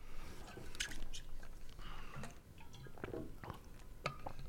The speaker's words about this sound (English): We just had a water break.